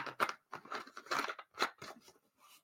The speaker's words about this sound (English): Give me 1 second. Let me drink some water. That alkaline water.